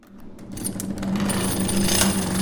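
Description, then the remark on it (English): A Yard Lead engine turning machine, a pulley-driven machine in use there since 1946 and engaged with both hands, cutting a pattern into metal, whirs up to a steady, busy running sound with a low sustained hum and rapid metallic clicking and ticking, gradually growing louder; no one speaks. “You use both hands to engage the machine, and you can hear it actually whirling and clicking.”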